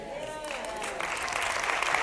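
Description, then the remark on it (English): Light, polite golf-clap applause from a small audience, a soft steady patter that swells slightly toward the end, with a faint voice underneath at the start. “It's a golf clap, you know.”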